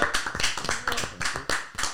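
A round of applause from a small group, with quick overlapping hand claps that stay steady throughout, with no talking.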